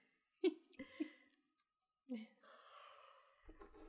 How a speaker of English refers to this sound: Oh, no, the yawns have returned.